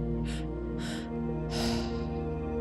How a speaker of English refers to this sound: And then slowly slow the breath down, coming back to a normal breath rhythm. Inhaling through the nose, exhaling through the nose.